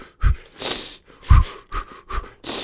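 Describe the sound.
A voice imitates labor panting: about five quick, forceful breaths in an uneven rhythm, each a short, airy huff with a breathy hiss, and no words spoken.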